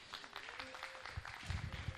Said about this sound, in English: Give her another hand.